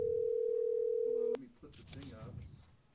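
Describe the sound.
A loud, steady phone ringing tone of a call to the speaker's father plays over a speakerphone for just over a second, then cuts off abruptly as voices begin talking.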